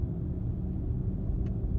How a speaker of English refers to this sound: Okay, so driving an electric car for the first time, driving a BMW electric car for the first time. It's very quiet and smooth.